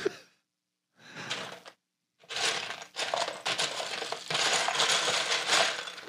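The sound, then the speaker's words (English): Small hard plastic Lego pieces clatter and rattle as a hand rummages through a loose pile, in a short burst, a pause, then continuous shuffling and clinking. “Ooh, shuffling through this.”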